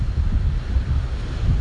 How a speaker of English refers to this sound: I'm at the beach in Redondo Beach, and I just wanted to share the sound of the waves with you. So just listen.